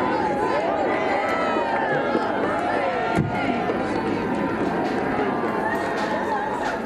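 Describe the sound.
A large outdoor crowd cheers the King as he steps out of his car and shakes hands with well-wishers: steady, dense noise of many overlapping voices calling and cheering, with a brief sharp knock partway through.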